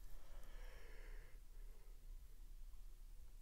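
A single breathy yawn, drawn out for about a second and a half before trailing off into near silence. It's soft, with no talking.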